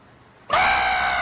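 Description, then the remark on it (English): A man imitates a goat with a loud, strained bleat that bursts in after a brief quiet moment and holds steady, raspy and wavering, until the end. “Is it a goat or a geezer? Oh, should we hear it again? That's definitely a geezer.”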